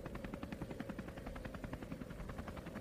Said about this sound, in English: The 9mm blast had done a temporary number on her hearing, which explained why she didn't know about the helicopter until she was almost to the roof.